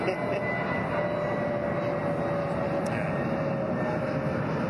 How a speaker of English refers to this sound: It seems to be most planes fly out of here late at night. It's just a lot of nighttime stuff.